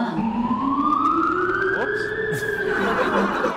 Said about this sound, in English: Too many sirens.